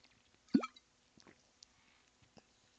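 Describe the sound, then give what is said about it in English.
Someone drinks water: one wet, rising gulp or swallow, followed by a few faint clicks and small mouth sounds in otherwise quiet surroundings. No one speaks. “I'm going to drink water to that, more because I actually need to drink water than The Voice reference, if you know what I'm talking about.”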